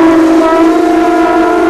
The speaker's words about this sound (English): The dulcet tones of Florida's annual conch shell blowing contest.